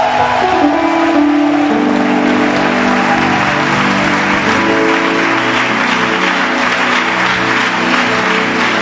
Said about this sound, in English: Are you happy to be here? Show it with a louder hand clap unto the Lord.